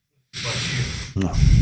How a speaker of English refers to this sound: Bless you. Namaste. Namaste over here.